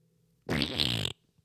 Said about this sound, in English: Oh, I let out a fart when I bent over like the pressure and everybody, I mean, it was like dead silence in the whole casino.